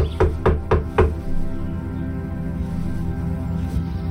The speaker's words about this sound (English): I wiped the sweat off my palms onto my pants and rapped on the door.